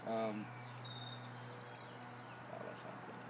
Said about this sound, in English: Those birds sound beautiful. Those birds sound great. It's nice ambiance. We're outside, by the way, guys.